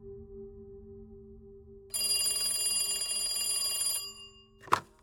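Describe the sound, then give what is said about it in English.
A telephone bell rings steadily for about two seconds over a low hum, then stops abruptly, followed by a sharp click as General Talat Mahfouz lifts the receiver in the early hours of July 6, 2008, answering a call from President Bashar Assad. No one speaks. “In the early hours of July 6, 2008, General Talat Mahfouz picked up his phone.”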